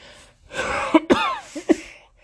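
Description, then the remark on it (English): An old woman's short fit of coughing: a raspy, breathy cough followed by several sharp, hacking bursts in uneven rhythm, moderately loud, with no talking. “More coughing is had.”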